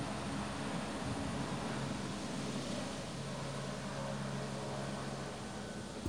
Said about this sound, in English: The plane or so helicopter. Excuse me. Wait, Max, there's a plane.